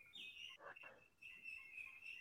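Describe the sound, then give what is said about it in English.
Faint Indian myna birds calling outside, a thin, sustained whistling cry broken by a brief harsh squawk, with no one talking. “Indian minor birds.”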